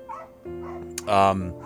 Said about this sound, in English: Yeah, so all right, our music is winding down, and I think the dogs are giving us a cue to go ahead and play the next chapter.